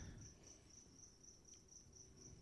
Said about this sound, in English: How many crickets are in this room?